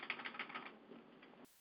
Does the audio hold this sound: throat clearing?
no